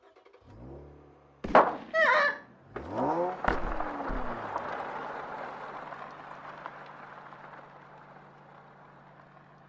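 A car engine revs, then a sharp heavy thud as the car hits a person, a shooter, followed by a second hard thump and a long rough rumble that slowly fades. No one speaks.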